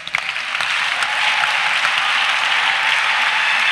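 An audience on its feet bursts into sustained applause for God, a dense, steady wash of many hands clapping that holds loud and even throughout, with no voices standing out.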